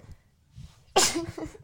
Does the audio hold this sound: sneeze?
yes